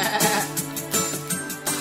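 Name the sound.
sheep bleating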